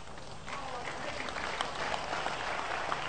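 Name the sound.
audience clapping hands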